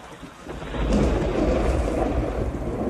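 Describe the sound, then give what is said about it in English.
Steady heavy rain hisses throughout while a deep, rolling rumble of thunder swells in about a second in and lingers, loud, with no voices. “Rain. Upon that planet, Earth. And they rain.”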